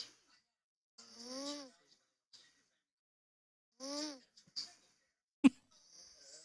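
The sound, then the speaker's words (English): Two drawn-out nasal snores made with the mouth closed, rumbling and tonal, about three seconds apart, with quiet breathy noises between and a sharp click near the end; a person seems to be imitating snoring. “That's not bad snoring.”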